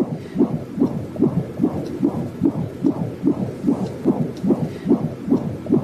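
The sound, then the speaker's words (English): A fetal heartbeat on a Doppler ultrasound, the probe placed on a young woman's belly by a sonographer: quick, steady whooshing pulses, roughly two or three per second, in a low muffled pitch over a constant background hiss, with no one speaking. “But then the sonographer put the Doppler on the young lady's belly.”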